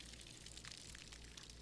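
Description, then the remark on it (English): A steady, soft rush of water splashing and gurgling from a garden hose onto the ground, continuous for the whole moment with no voices. “The sound of the gurgling water splashing all over the ground made Brett smile.”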